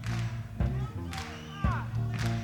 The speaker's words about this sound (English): almost sounds like the audience wants to clap on 2 and 4. It does, yeah. You heard it. Yeah. You almost have to be in his headspace to be able to clap with him or clap with the beat.